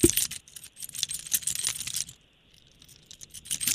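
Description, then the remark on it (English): Keys jingle and clink in quick, bright metallic bursts out front of a house, pausing briefly midway before a few softer rattles resume. No one speaks. “That's just the sound of your keys jingling.”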